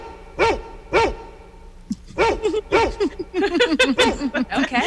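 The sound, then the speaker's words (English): A celebratory dog sound effect played for a birthday: a dog barks twice, then breaks into a rapid, excited run of loud, yappy barks and yips, with no talking. “I have a celebratory cat and a celebratory dog. Which one would you like? The dog.”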